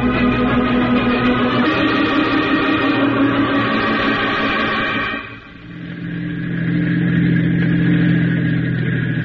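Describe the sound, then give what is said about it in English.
A car engine hums steadily, then the revs drop and the pitch falls as the car slows on a road up a valley, settling into a lower, rumbling drone. “You're slowing down. Are we near the cottage already?”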